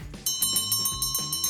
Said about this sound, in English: Oh, ladies and gentlemen, what do you know? There's the closing bell.